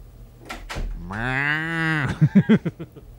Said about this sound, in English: All of my doors sound like cows, baby. When you invented a VCR thing that helps old people program it, you can make your door sound like anything.